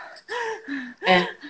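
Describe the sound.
A voice imitates quick, shallow nervous upper-chest breathing: two short, voiced gasping breaths, each rising sharply then trailing off, with no words spoken.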